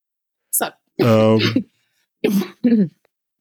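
Someone clears their throat with a drawn-out, rasping rumble, then lets out a couple of short, sharp coughs after a brief pause, with no talking.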